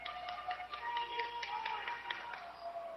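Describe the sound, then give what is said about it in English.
A single person claps steadily, a quick run of sharp hand claps at an uneven pace, applauding a defensive effort during a basketball game, set against a continuous hum of crowd and arena noise. “applauding just this tremendous defensive effort for the Cats.”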